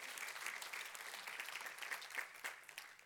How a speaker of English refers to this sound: Because you serve the bigger God. Amen. You can clap for that. Don't be scared.